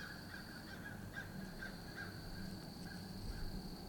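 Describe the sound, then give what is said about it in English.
Birds call faintly outdoors as they fly around, a few scattered calls over a steady, quiet background of ambient noise with a continuous high-pitched drone. No one speaks. “And as I'm recording and I'm watching these birds fly around”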